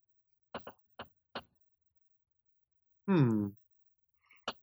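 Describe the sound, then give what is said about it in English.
A few quick taps, then a loud, voiced yawn lasting about half a second, its pitch sliding downward, followed by one more short click. No words are spoken. “That was a very loud yawn in my ear.”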